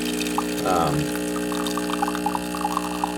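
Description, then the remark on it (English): Water runs into the water tank at the back of a tanked brewing machine over a steady mechanical hum, with a brief gurgling surge early on and small trickling blips after, moderately loud. “A thing about this, so this is a tanked machine, which means you have to fill the water tank in the back.”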